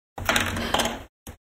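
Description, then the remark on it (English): Dice being rolled across a table: a clattering rattle lasting about a second, followed by one brief knock as they come to rest. No voices. “I'm going to roll this dice now.”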